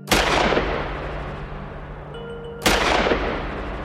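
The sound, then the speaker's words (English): Two loud, booming gunshots ring out a few seconds apart at Caswell Canyon as a man taken out of a car is shot in the head repeatedly, each with a sharp crack followed by a long, rumbling echo that slowly fades. No voices are heard. “And he said he just kept shooting him.”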